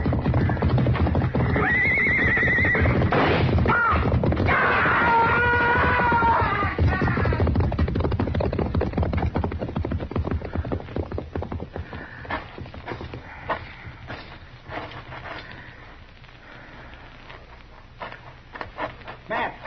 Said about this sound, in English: Look, he's trying to ride a horse out.